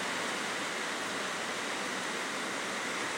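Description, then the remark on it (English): A second round of heavy rain, heavier than the first, pours down in a steady, dense hiss that fills the whole stretch without pause or change, with no voices over it. “And more rain to confirm what I'm saying. And this time it's even heavier than the first set.”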